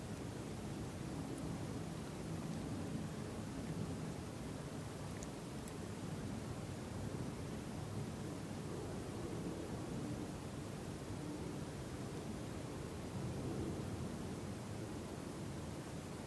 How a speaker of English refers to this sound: No effort on your part. Like the sound of that plane.